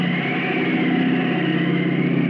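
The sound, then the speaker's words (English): A steady, droning airplane engine hums at an even level throughout as a man jumps out to parachute down, a low mechanical rumble with a buzzing, harmonic edge and no voices or pauses. “Gradually, the drone of the plane fades, and Tim floats down to the silent space.”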